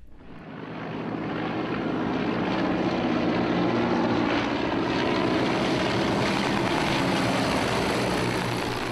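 A propeller aircraft engine, like a P-51 Mustang's, swells up within the first second into a loud, steady, throaty drone with a deep rumbling hum, holding on without any voices.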